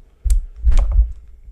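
Objects getting knocked over: a sharp bump followed by a longer run of heavy, dull thuds and clattering knocks, fairly loud, with no voices.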